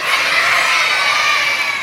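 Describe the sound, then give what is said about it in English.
A large group of children jumps up and screams "resurrection" together on a count of three. It is a loud, sustained burst of screaming and cheering, and the crowd noise holds steady for a couple of seconds. “We're going to sit down and then we're going to jump up and we're going to scream resurrection.”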